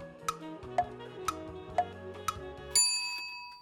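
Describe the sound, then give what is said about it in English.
A quiz answer countdown timer ticks steadily, five sharp ticks about half a second apart over a low musical bed, then a bright bell-like chime rings out and lingers at the end. “3 seconds on the clock.”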